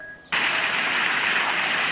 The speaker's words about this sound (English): Water, lots of it gushing from the Johnny Pump, cooling down that hot tar, had a smell of its own.